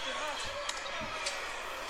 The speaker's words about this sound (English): So you got guys slapping the ring, somebody exiting the ring.